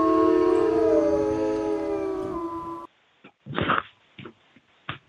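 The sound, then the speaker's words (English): A sustained, wavering wolf-like howl done by a human voice carries for about three seconds, then breaks off into a few short, scattered vocal bursts. “Is that supposed to be a wolf howling for Wolfenstein?”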